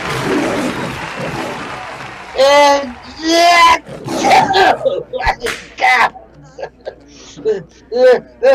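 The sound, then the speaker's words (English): Two loud, drawn-out roars from trained circus tigers ring out, followed by a sharp crack and a run of shorter, rough growls and snarls. “It's that act. Feline and a trained tigers.”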